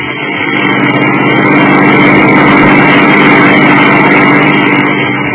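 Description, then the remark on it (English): A car engine drones steadily as the vehicle drives home, a loud, even low rumble with a constant hum and no voices, holding level for the whole stretch. “Marv and I were driving home, both of us very quiet.”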